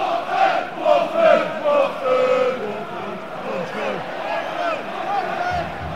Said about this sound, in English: We're at the Watford-Arsenal game. It's a late kick-off. Everybody's clapping, don't know why. Everybody's been in the pub, like, even the kids are drunk. We're here, there's a lot of chanting.